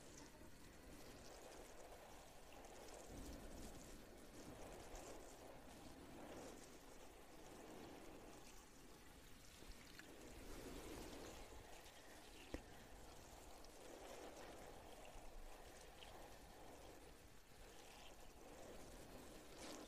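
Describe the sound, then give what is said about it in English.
Steady running water pours and splashes continuously, a broad hissing rush with soft gurgling variations and no voices, from a tap or shower spraying over hair during hair washing. “How's the water? Is it warm enough?”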